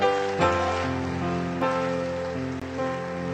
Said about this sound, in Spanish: Alguien que eleve un fuerte aplauso a Dios, por favor.